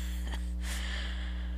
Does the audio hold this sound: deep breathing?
yes